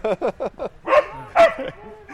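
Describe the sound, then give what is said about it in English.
A dog barks in the background in a quick series of four short yaps, then two louder, longer barks, clear with no one talking over them. “Yes, every episode does normally have a barking dog.”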